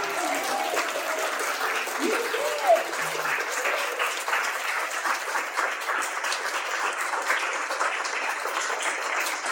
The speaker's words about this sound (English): A round of applause for those. You did it.